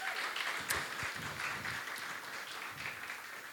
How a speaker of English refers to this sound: So let's give him a big round of applause.